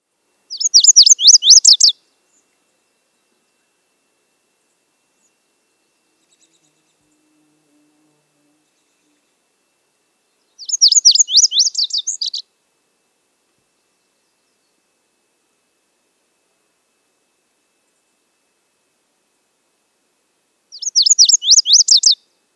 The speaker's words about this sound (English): Our last bird today, which has a warbling song, is the lazulite bunting.